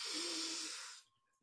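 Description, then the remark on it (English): A person makes one long, loud sniffing inhale, a breathy rushing sound lasting about a second, imitating someone putting their nose on the bed sheets in a child's bedroom, then it drops to near silence. “he'll kind of like sniff around the pillow”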